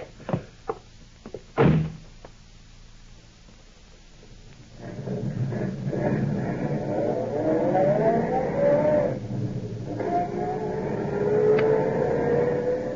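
A few sharp clicks and a car door slamming shut, then an engine starts and revs up, its pitch climbing as the car pulls away and drives off.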